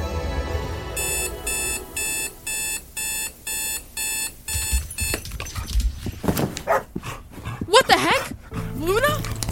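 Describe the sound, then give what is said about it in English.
A dog barks and yelps in short, excited bursts after a run of rapid electronic alarm beeps, the barking fairly loud toward the end. “Hey, what are you doing with my dog?”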